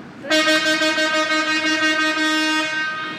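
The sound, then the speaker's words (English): A loud, sustained air horn from heavy truck traffic on the Brooklyn-Queens Expressway above Third Avenue blares for about two and a half seconds, its rich tone wavering slightly, over a faint low rumble of passing vehicles. “I can hear some of the heavy truck traffic that you're talking about.”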